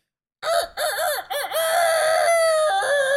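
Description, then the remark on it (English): A person's voice imitates a rooster's crow: a few short rising notes, then one long, strained, sustained cry held loud to the end. “That's my chicken impression.”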